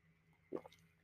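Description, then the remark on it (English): A single quick, wet sip of water, soft, followed by a faint swallow; no one speaks and the background is otherwise quiet. “Excuse me, let me take a drink of this water, y'all, because I'm clearly tripping.”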